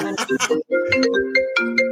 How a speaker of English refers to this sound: So my phone is off, but it rings through to my computer.